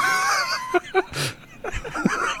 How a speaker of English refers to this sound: Get out of the fucking road, geese. What is with these fucking Canadian geese? They piss me off every day.